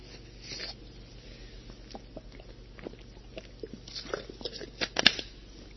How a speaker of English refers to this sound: And so that's where I want to take the rest of the lesson here. Let me take a drink of water first.